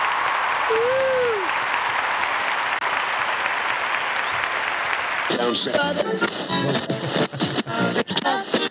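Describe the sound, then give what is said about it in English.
A steady burst of crowd applause fills the first five seconds, with a short whistle early on, then people start talking as the clapping carries on underneath. “It's just a round of applause for you, man.”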